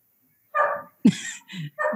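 A dog barks four times in quick succession, loud, with short gaps between the sharp, slightly yappy barks and no voices alongside.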